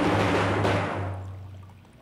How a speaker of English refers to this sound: Is he peeing? Sounds like he's peeing. That was you pouring water in your cup.